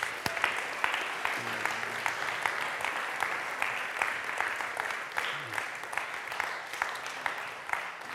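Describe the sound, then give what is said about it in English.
A crowd applauds steadily for about eight seconds for the Gatehouse team, who are standing up, a dense, even patter of many hands clapping, with a few faint vocal whoops rising briefly above it. “Okay, let's give them a round of applause.”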